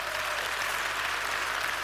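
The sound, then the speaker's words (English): Steady audience applause for a group of students who went on a trip, sitting in the front row: a dense wash of many hands clapping at once, loud throughout with no speech rising above it. “You want to give them a huge round of applause.”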